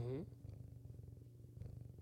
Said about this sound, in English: Is she purring?